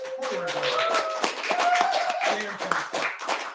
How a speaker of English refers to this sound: It's a live show to have fun with everyone on the internet and in the audience as well. Speaking of audience, can you all give him one more round of applause?